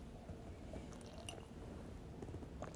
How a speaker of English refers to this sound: Excuse me, I'm drinking some water.